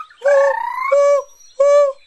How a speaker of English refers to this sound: One day, the owl couldn't stand it anymore and cried out in fury.